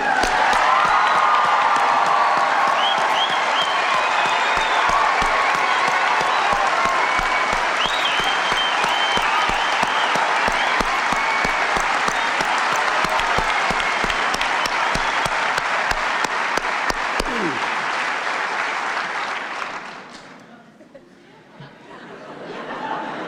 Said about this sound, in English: So I wave my magic wand over you and I say, fellow South Africans, how about giving these Americans a real humdinger of an applause?